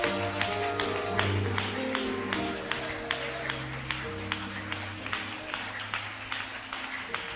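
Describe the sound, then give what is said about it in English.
An audience claps hands in a steady, even rhythm, roughly three claps a second, over a low sustained tone like organ or humming voices, at moderate volume throughout. “Oh, clap those hands.”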